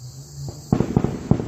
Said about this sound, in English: Somebody's shooting. No, maybe there's a fireworks, but I don't know. Good thing about living in the country, right?